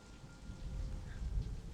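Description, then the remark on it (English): Steady pouring rain, a dense continuous hiss with a heavy low rumble underneath, holding at an even, moderate level throughout with no voices. “She doesn't look like she's bleeding, but she is standing in the pouring rain, so it's hard to tell.”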